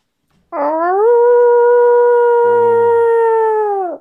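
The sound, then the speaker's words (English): A person imitates a wolf howl: one long, sustained, rising then steady tonal wail lasting about three and a half seconds, loud, with a brief low rumble partway through. “That could have been an actual wolf.”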